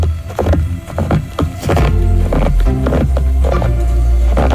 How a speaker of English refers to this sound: the crunch of footsteps through snow is one of Lee's favorite sounds